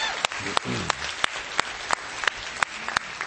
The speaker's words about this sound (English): Round of applause if you enjoyed Pastor Andrew McCourt from First Covenant.